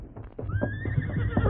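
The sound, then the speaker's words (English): A horse, coming along a trail from the west, whinnies with a rising, drawn-out neigh while hooves clip-clop in a quick rhythm underneath, moderately loud, with no one speaking. “You hear horse. Run plenty fast.”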